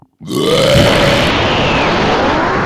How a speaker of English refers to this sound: He just has to test his burps out.